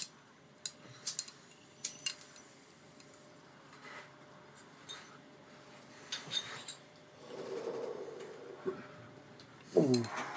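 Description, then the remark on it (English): Glasses clinking together in a toast: scattered light taps and clinks, ending with one brighter, ringing clink near the close, with a faint murmur in the background. “Cheers. Cheers, boys.”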